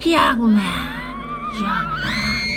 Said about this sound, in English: Terrified, he screams.